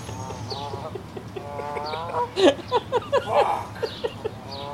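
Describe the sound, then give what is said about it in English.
A goose that has got into a car honks and squawks, starting with drawn-out nasal calls and then breaking into a quick series of loud, sharp honks that trail off. “The goose just got in the car!”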